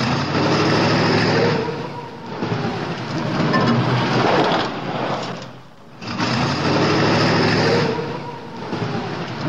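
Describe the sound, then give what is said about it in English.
A car engine hums steadily with broad road and wind roar, fairly loud, easing off briefly midway before building back up; no one speaks. “We're not going to talk on the drive over.”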